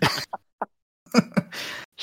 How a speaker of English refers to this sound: Yeah. You can't come round. I can't let you in. I fucking can. I'll come round and cough all over your fucking front door.